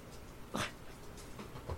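A dog pants softly with one sharper huffing breath, then a few faint whimpering sounds follow. The sounds are quiet, with no talking.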